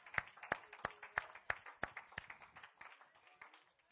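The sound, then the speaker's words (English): A church audience claps hands unto the Lord in a steady, rhythmic beat, the sharp claps landing roughly every third of a second before loosening into scattered, softer applause toward the end. “One more time, let's clap our hands unto the Lord.”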